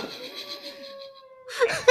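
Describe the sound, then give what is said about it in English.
A dog named Dude whines in a long, thin, steady high-pitched tone for about a second and a half, then breaks off into a couple of short, rough, noisy bursts. “Jesus, he might stop whining. I think he wants to weigh in.”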